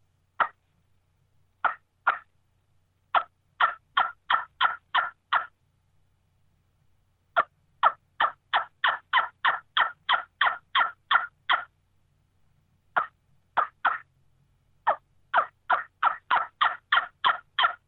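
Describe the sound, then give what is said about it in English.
Turkey hen yelps blown on a small hen wingbone call: sharp, high, raspy notes in quick, evenly spaced runs of several yelps, separated by short pauses, with no talking. “So, you know, here's a little hen bone.”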